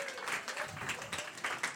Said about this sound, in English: Round of applause